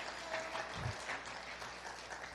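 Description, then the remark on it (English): An audience claps to give God a praise, producing a dense, steady wash of many hands applauding together that holds at an even level throughout, with no voices rising above it. “Somebody clap your hands and give God a praise.”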